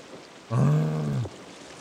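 A single low, droning whale moan among whale and dolphin sounds, with rich harmonics, lasts under a second, its pitch gently rising and falling, set against a steady watery hiss.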